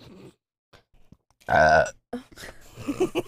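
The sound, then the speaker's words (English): A single loud, drawn-out burp after chugging a drink, lasting about half a second, deep and croaky with a rough, resonant tone, followed by brief bits of talking. “I don't have to burp. That's because you've been drinking it so slow.”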